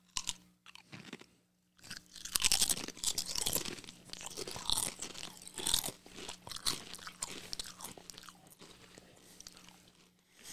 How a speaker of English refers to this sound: All right, you have to take a crunch of a chip. No, I'm just going to eat this in bitch. The microphone. Ready? Huh. Set, go.